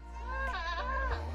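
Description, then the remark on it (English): A single wavering, nasal goat-like bleat lasting about half a second, most likely a person's voice imitating a goat, heard alone over a low steady hum. “There's the goat again.”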